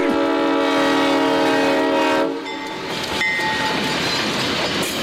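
A loud, sustained train horn blares for about two seconds, then gives way to the rumbling, rattling roar of a train rolling past, with a faint high tone briefly riding over it; a sound effect introducing the Trump train segment.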